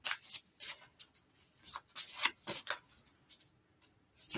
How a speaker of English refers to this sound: In this deck, we're going to shuffle again because just to be sure.